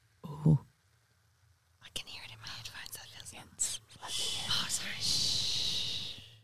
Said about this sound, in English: No, that's the sound. We're pouring some champers for those. It's not champers. I'm not that rich.